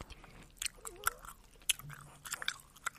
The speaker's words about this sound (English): Some people don't want me to chew gum. I'm like, that's my favorite trigger.